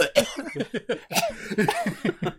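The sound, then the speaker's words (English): A voice imitates an outdoor air conditioner sputtering and coughing, a rapid series of choppy, raspy bursts, breaking into laugh-like huffs near the end. “The AC outside started coughing because it wasn't ready, you know?”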